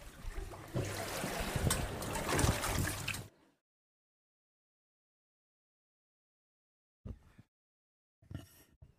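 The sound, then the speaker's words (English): Water trickles and splashes steadily in a baptismal tank during a baptism for about three seconds, then stops abruptly; after a long silence, two short, quieter sloshing bursts follow. The water is cold. “Our God's a faithful God, even in this cold water.”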